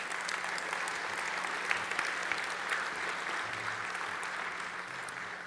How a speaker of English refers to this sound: Yep, give me a round of applause.